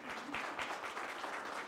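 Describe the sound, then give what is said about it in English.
A church audience claps together for new members joining the church, a steady, dense wash of applause, many hands blending into continuous crackling patter that stays even and fairly soft throughout the short stretch. “And then you go ahead and clap.”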